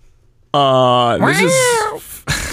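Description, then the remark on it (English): A person imitates a cat with one long, loud, nasal meow that bends upward in pitch and then slides down, followed by a brief breathy noise at the end. “This is a cat covered in lice.”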